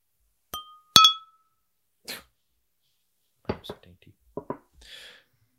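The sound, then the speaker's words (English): Two bright clinks of beer glasses knocking together in a toast, the second louder and ringing briefly, followed by a few short bursts of voices and a soft breathy sound. “We'll say cheers to Half Acre and Orin”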